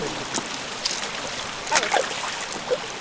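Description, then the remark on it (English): Steady rushing water fills the scene, a broad hiss of waterfalls cascading down the cliffs into a creek in Fern Canyon, Humboldt County, with a few brief splashes and drips rising above the constant flow. “With these waterfalls cascading down the cliffs.”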